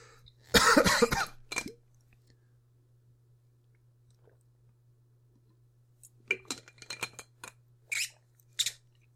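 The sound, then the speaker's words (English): A man drinks water: a loud, noisy slurp at the start, a long quiet pause, then a run of short gulping and swallowing sounds, all over a steady low hum with no talking. “Listen closely as this dingus hydrates himself.”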